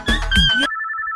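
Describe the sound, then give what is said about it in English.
A telephone rings with an electronic ringtone, a steady warbling tone that follows a short burst of busier, musical sound and carries on alone, clear and fairly loud. “Answer the phone, answer the phone, eh?”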